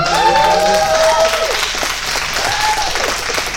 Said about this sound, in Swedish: Grattis! En applåd för...